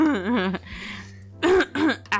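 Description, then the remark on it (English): Someone clears their throat loudly and very close to the microphone: a few gravelly, voiced rasps separated by a breathy, hissing scrape, with no talking. “Don't clear your throat right into the microphone.”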